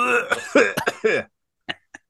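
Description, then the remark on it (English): A person with a lingering cough coughs in a rough, rapid fit of several hacking coughs, then after a brief pause gives two short, quieter follow-up coughs. “I've had this lingering cough.”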